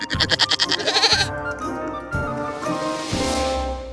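A goat bleats, starting with a rapid, quavering tremolo and then stretching into a longer, wavering cry that trails off. No voices are heard.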